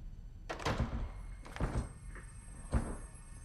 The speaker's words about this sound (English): Trina, you broke the door.